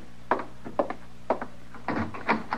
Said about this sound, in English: All right, Chester. I guess it was the wind. No, sir, Mr. Dillon, that ain't the wind. Is somebody working the door that way?